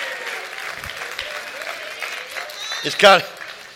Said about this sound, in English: Come on now, where you can clap your hands and rejoice and say, I have found a place that still loves God with all their heart.